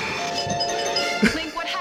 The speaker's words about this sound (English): Why is my doorbell ringing? Oh, that's your doorbell? Yeah.